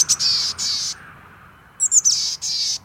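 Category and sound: bird, chickadee calling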